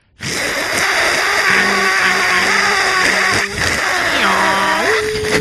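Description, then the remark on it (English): A crowd sound effect that sounds like a dial-up modem screech: loud, continuous hissy static layered with steady high whines, stuttering low beeps, and tones that slide and step in pitch before cutting off abruptly. “You guys have been working on my crowd sound effect. It sounds exactly like a modem.”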